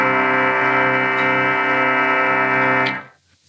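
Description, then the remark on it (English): A pipe organ, played on the same keys with a different stop pulled out, sounds a loud, steady chord with a bright, buzzy, reed-like tone, held for about three seconds before cutting off abruptly into a brief fading tail. “All I have to do is pull out a stop. Same keys, a different stop.”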